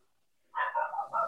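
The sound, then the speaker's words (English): A dog barks in a quick run of three or so agitated yaps after a moment of quiet, fairly loud, with no one talking over it. “See, the dog's upset.”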